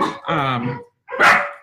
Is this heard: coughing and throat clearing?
no